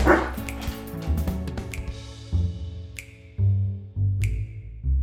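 A dog barks excitedly in a quick, uneven string of loud barks mixed with higher yips and whines, with no one talking over it.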